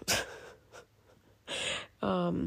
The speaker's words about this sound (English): Oh my god, here comes another yawn. Excuse me, Jesus.